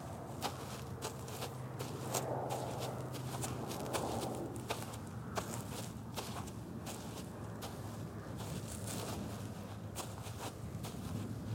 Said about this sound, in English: After my feeble attempts of defiance, the only sound heard was our footsteps in the snow.